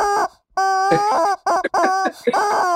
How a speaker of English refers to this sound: I got 13 rubber chickens. Now, I start out with one. 13. 13. All different colored chickens.